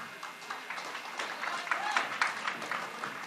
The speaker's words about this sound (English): However, I have one solo win, and here's how I got my solo win. I'll wait for applause.